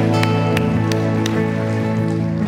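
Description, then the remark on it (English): An audience at Foundations Church applauds 11 people in a dense, steady wash of clapping that holds for a couple of seconds, with sustained musical tones playing underneath. “Can we give these 11 people a huge round of applause, man?”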